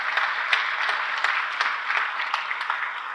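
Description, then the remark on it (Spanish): A church audience at a Sunday service applauds itself for being there, steadily, a dense wash of many hands clapping at an even, fairly loud level with a few sharper claps poking through, and no one talking over it. “¿Ustedes se pueden dar un aplauso por estar aquí en este momento?”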